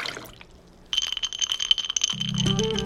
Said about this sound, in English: glass, ice, pour.